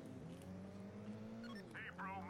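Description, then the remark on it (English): A steady, droning race car engine in a video game hums with layered tones, briefly dipping in pitch then holding, while short chirpy electronic effects flicker over it near the end. “I'm going to try to find another character as I race around here.”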